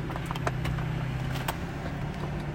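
A fan runs with a steady, low droning hum that holds one pitch throughout, over a bed of even whooshing noise, with a few faint clicks scattered on top.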